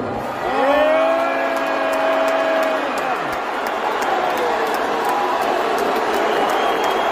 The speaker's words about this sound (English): There's some cheering and some clapping in there, but there's a lot of booing. And that was a first for Elon Musk. This is the first time I've ever seen him get publicly booed.